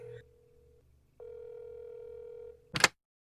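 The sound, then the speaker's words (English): A steady electronic telephone ring tone, as heard through a handset, sounds in two long pulses with a pause between, followed by a brief sharp noise burst at the end: Xander has dialed from a bedside telephone and the phone rings in the dorm room of Buffy and Willow. “Still confused but far calmer, they can hear their phone ringing.”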